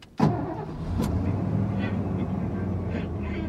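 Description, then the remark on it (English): A truck engine turns over with a sharp burst, then settles into a steady, low rumble that runs without a break. Nobody speaks. “God, I love this truck.”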